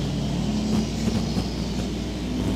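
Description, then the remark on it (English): A passing car with a ridiculously loud exhaust system rumbles steadily with a deep, throaty exhaust drone, holding a fairly constant level throughout rather than clearly rising or fading. No one speaks. “And you pause whenever people have ridiculously loud exhaust systems.”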